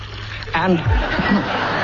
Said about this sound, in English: Just to demonstrate how I produce this lovely sound, I fill up this glass so.